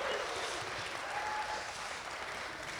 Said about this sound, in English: Can we just give her a little round of applause and welcome her?